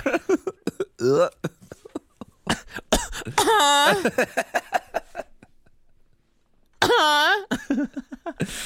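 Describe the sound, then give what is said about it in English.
A run of sharp coughs from people coughing on each other comes in rapid bursts, broken by a couple of longer, strained voiced sounds and a brief quiet pause before the coughing picks up again. “Cough into my pussy right there.”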